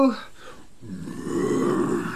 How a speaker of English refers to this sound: Just then, there was a terrifying growl and a roar, and something sprang out of the cave. It certainly wasn't a rock rabbit. It was a very angry leopard.